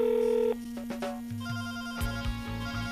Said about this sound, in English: don't you answer that damn phone door.